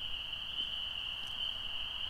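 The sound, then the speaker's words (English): An American toad's long, unbroken trill holds one steady high pitch throughout over a quiet outdoor background at nightfall, with no voices. “There he is. Trilling in the back there. Really beautiful call for a toad.”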